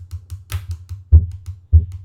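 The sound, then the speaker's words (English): A series of dull thumps as a wrist bangs on a table, with two heavier, louder bangs near the end that leave a brief resonant ring, a little warp sound. No voices. “That's me banging on the table with my wrist, and it made that little warp sound.”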